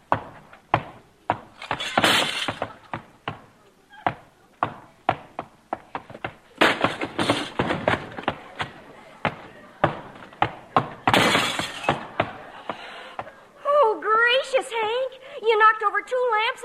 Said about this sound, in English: You broke the legs off the sofa and stuck your foot through the front window.